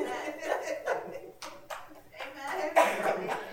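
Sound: single person clapping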